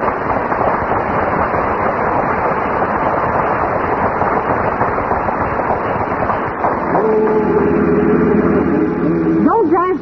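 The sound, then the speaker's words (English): The car carrying Fibber McGee and Molly runs with a steady, rough engine rumble, shifting partway through into a droning, buzzing motor tone whose pitch climbs sharply right at the end. “Well, anyway, here they are in the car, Fibber McGee and Molly.”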